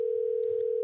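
A steady, unbroken phone dial tone hums at an even, moderate level for under a second as a phone call is placed, with a faint low rumble underneath and no voices.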